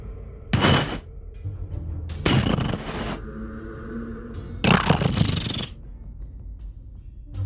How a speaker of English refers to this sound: And in the distance, you can hear a bassy rumbling noise in the far distance.